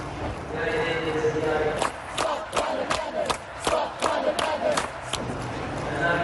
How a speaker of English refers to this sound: They're shouting, stop climate madness. The people are inside this room talking about climate change.